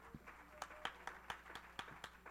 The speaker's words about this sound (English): Somebody clap your hands and give God praise.